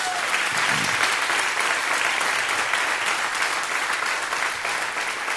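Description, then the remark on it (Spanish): An audience breaks into sustained applause for Jesus: dense, steady clapping from many hands that stays loud and even for several seconds with no voices standing out. “Den un aplauso a Jesús.”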